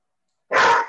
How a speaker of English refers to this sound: Well, that dog really doesn't like that story. I think there's coyotes outside. She's going to go outside and howl now, but that's good.